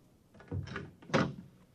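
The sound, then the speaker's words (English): An office door in a deserted skyscraper opens: a soft latch click, then a heavier wooden thunk as it swings and knocks. Two distinct sounds about half a second apart, with no voices. “Finally, I was in front of a door that read, Andrew C. Rednick, public analyst. Grin and come in.”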